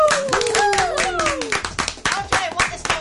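An audience, including some teachers, at STFA Seaward Woo College claps steadily for about three seconds, a dense, loud patter of many hands, while voices whoop and call out over it with rising and falling pitch.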